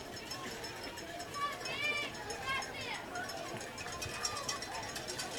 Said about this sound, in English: Cowbells are still ringing, just a little lower. There's some noise out there.